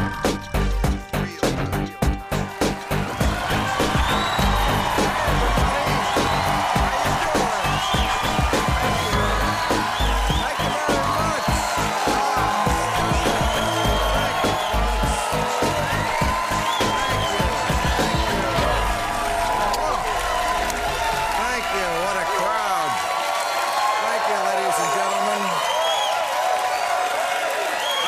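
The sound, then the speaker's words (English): A large studio audience at the HBO late-night show Real Time with Bill Maher claps and cheers loudly and steadily, with whoops rising above dense, sustained applause that carries on for nearly half a minute before tapering slightly. “Oh, what a crowd.”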